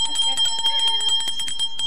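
A bell rings rapidly and continuously, its repeated metallic strikes blurring into a steady, bright, sustained tone that is loud, with no voices.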